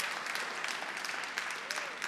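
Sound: applause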